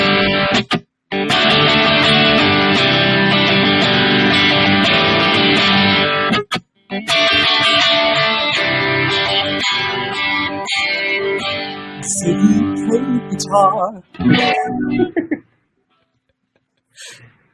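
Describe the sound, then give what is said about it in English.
Heavily distorted rhythm guitar chugs loudly, broken up by sharp silent breaks and punchy stabs, then trails off into quieter fragments near the end. No one speaks over it. “You know, if I was doing something clean, it doesn't really change what I'm going to do, except that a lot of times as we get more distortion in there, it's nice to have those breaks. You hear those punches and it sounds really cool.”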